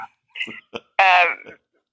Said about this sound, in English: Because, oh, there goes the dog. Hold on, I'm sorry.